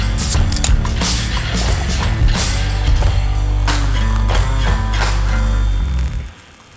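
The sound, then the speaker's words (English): Loud, continuous mechanical grinding from the neighbours, heard in the background for the third day in a row, with a low droning hum, scraping bursts and rattling clatter running steadily for several seconds before abruptly dropping away at the end. No voices. “It's the sound of my neighbours grinding for the third day in a row.”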